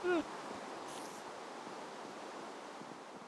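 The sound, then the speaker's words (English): A brief rain shower: a steady hiss of falling rain fills the whole stretch, a dense, even wash of patter with no pauses, opened by a brief high tonal squeak. “That was a quick shower.”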